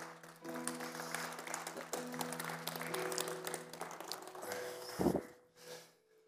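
An audience applauds steadily for several seconds, a dense wash of clapping with a sustained musical drone beneath, before a brief thump and the clapping tapers off.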